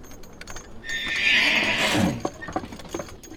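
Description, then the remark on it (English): A muddy horse gives a loud whinny lasting about a second, rising and then shaking down in pitch, followed by a few soft hoof clops and shuffling. “You are one muddy horse.”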